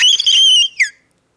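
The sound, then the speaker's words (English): A person imitates the shriek of screaming, writhing trees with a loud, high, whistle-like squeal that holds steady, then bends downward into a short second squeal before cutting off into silence. “Would you, like, make what you think the noise is?”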